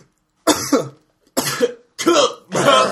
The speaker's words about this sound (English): The cough, too.